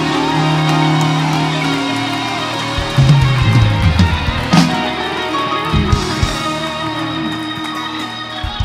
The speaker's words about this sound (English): Why don't you shout unto God and clap your hands?